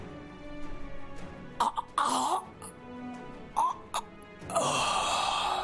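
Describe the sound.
A voice imitates wet, choking coughs of someone coughing up blood, several ragged bursts with gurgling throat-clearing between them, fairly loud, ending in a longer strained rasp.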